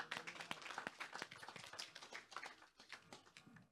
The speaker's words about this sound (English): Hallelujah. Clap hands for Jesus.